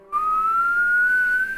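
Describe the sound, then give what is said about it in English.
A lone, steady whistle of an incoming round lobbed from a gun: one sustained, fairly loud tone lasting about a second and a half, its pitch creeping slowly upward, with no talking. “Yeah, The gun lobs up and you can hear the...”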